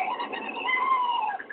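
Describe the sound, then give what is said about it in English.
A person mimics a cat's call with their voice: one drawn-out, wavering meow-like yowl, fairly loud, trailing off at the end with no other talking. “Sometimes those bird calls and cat calls.”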